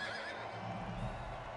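A horse whinnies loudly, a wavering, shrill neigh lasting the whole short moment with no talking, over a low rumbling background.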